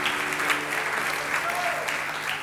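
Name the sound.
audience applause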